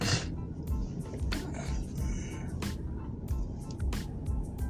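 Steady, loud road rumble of passing car traffic, with brief hissing whooshes cutting in now and then; no one speaks.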